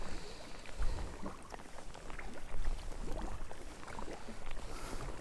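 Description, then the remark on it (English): A red kayak paddled on the sea past the Bad Step toward Kamasunari Bay and along the coastline to Elgol, with steady splashes and drips from the blades over a constant outdoor wash of wind and water, moderately loud, no voices. “So I'm going to paddle now around past the Bad Step and then around into Kamasunari Bay and then along the coastline to Elgol.”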